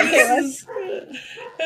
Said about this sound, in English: The dogs is mad. Spell it. The dog's mad.